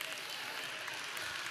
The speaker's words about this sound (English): I cannot stand your pitiful little golf clap. I'm not playing golf.